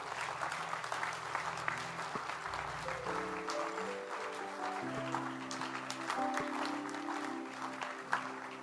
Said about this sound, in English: Clap your hands for them as they go.